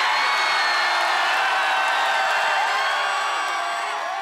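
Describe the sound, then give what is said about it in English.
A theater crowd, right before the film Attack of the Clones starts, cheers wildly, a dense, loud roar of shouting and whooping voices that holds steady throughout with only a slight fade toward the end. “And then you got a theater, looks like somewhere in San Francisco, where right before the movie comes out, and people are going completely insane.”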